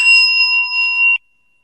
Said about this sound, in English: The vibrations of the bell keep changing and the sound keeps changing.